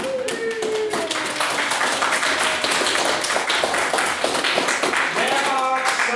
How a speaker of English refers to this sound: This evening, that we've really got to make the effort for every round of applause, otherwise, it's going to be really sparse and minimal.